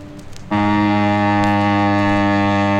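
A bass clarinet sounds a loud, steady low note after half a second of quiet rustle, holding the reedy, buzzing tone without a break. No one speaks.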